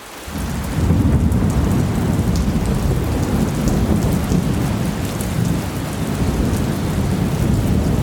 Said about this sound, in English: Rain. Rain.